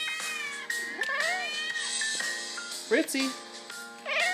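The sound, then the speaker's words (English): A cat named Fritz meows several times, drawn-out rising and falling cries spaced a second or two apart, while a person talks softly over and between them. “He makes noise.”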